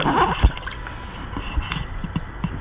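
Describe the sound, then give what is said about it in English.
Water from the tomato paste can splashes and sloshes as it is poured into a pot of tomato paste for a sauce, a busy liquid pour with small irregular splatters and a few sharper thuds, heard alone with no talking. “We're putting in water.”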